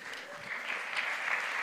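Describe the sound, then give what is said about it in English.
A steady wash of audience applause for a man who caught a ball thrown from the stage, many hands clapping in a dense, hissy patter that holds at an even, moderate loudness throughout, with a faint murmur of voices beneath. “Give him a round of applause there.”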